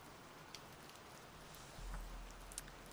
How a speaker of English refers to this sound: And then feel free to listen to the raindrops and fall asleep or get up whenever is good for you.